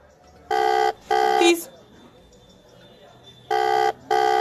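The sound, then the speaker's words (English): A phone call's ringing tone sounds in buzzy double bursts, two short rings, a pause of about two seconds, then another pair, steady and fairly loud as if heard through a speaker. “Okay, it's ringing. Oh, it's ringing.”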